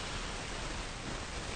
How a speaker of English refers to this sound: What is that static I keep hearing in the background there? It's got to be the mic. It's got to be the microphone. Microphone, microphone. The microphone's out here.